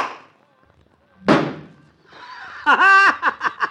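A single sharp, solid thunk of a golf ball, hit down a street, smacking into the door of a car parked across the street and denting it, loud and sudden after a quiet pause, followed by voices breaking into exclamations and laughter.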